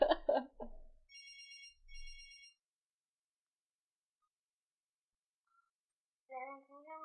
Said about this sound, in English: Oh, the phone. Let's go to the phones.